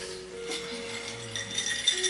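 Whiskey swirled in a glass, a soft continuous sloshing with light clinks and rattles of glass scattered through it, fairly quiet and steady for about two seconds, with no one talking.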